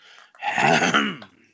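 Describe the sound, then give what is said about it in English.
A person clearing their throat to get into a customer service speaking voice: a single loud, rough throat clearing lasting about a second, gravelly and voiced like a sputtering engine starting up, with no talking around it. “That's how you clear your throat. You clean your throat like a lawnmower.”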